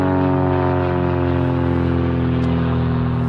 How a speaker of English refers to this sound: Just a second, there's an aeroplane, I can't hear myself.